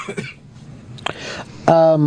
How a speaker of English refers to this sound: …, your cough's getting bad again.